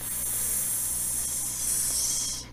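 A snake hisses in one long, steady, airy breath lasting a couple of seconds before cutting off abruptly. Loud, with no voices.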